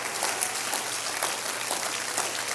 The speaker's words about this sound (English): Somebody clap your hands if you believe it.